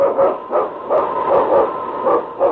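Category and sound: animal, husky sled dog barking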